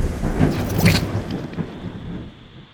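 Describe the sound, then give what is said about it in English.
A loud rumble of thunder rolls over steady, hard rain during a rainstorm in Coopmore Ridge, its low boom swelling then slowly fading away while the rainfall hisses on underneath. “A storm within the relationship of two friends, and an actual rainstorm.”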